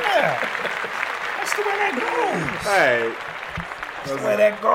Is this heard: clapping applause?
yes